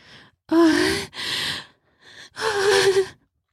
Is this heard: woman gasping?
yes